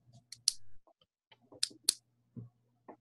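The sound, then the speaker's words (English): A pen being clicked repeatedly, a handful of sharp, quiet clicks at an uneven pace, some in quick pairs, over a faint low hum with no talking. “And you have this addiction to clicking pins while you're talking.”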